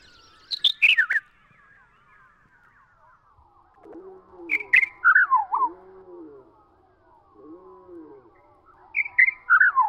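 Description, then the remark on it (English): A Henslow's sparrow song played back slowed down, revealing five notes the bird delivers too quickly for the human ear to resolve: three bursts of several quick descending whistled notes, separated by lower, drawn-out swooping tones, clear with no talking. “When you play back that to slick, slow it down, it's actually five beautiful little notes that the bird is delivering so quickly the human ear can't resolve them.”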